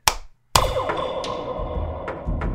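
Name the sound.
three hand claps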